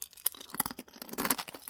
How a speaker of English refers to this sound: Could I have a cornflakes eating sound, please?